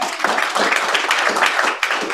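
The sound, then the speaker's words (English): An audience applauding a guest as he is introduced: a dense, steady wash of many hands clapping at once, loud and sustained for a couple of seconds, with a few sharper claps popping out. “please give him a round of applause.”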